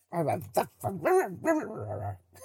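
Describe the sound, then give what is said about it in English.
A person mimics a dog, letting out a quick run of four or five yappy, whining barks, the last one stretched into a longer whimpering howl. “Are you a dog now?”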